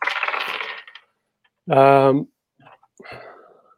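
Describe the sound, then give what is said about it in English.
A brisk clatter of FUD dice, marked with reasons why Bitcoin is going to die, being rolled and tumbling across a hard surface for just under a second, followed by a short voiced sound and a few faint, scattered noises. “I actually have my my Nick Carter FUD dice next to me”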